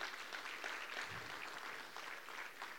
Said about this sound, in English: Let's go ahead and give all of our first-time guests a round of applause.